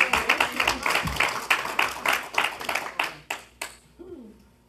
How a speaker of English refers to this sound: Give God a good hand clap of praise this morning. Amen.